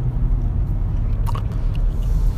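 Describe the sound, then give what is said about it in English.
Chewing of Super Bubble bubble gum, soft moist mouth sounds with a few faint clicks over a steady low rumble, and no one talking. “Chewing gum.”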